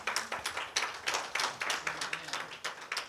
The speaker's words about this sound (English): Come on, let's give God a hand clap on today.